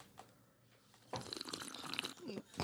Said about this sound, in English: That was the bong water.